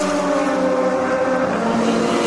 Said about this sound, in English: No, I got a good spot right here to watch the cars go by. It's a straightaway, and it's free.